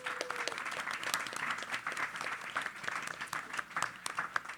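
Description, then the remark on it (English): An audience at a City Club forum in Cleveland applauds the panelists steadily, many hands clapping in a dense, crackling wash that holds at a fairly even level for several seconds with no voices standing out. “Round of applause for our panelists today.”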